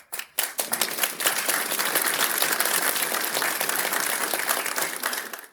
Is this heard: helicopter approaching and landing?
no